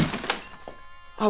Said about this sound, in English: Oh no! Broke my phone. Idiot! Now I'm a big fat loser with no phone.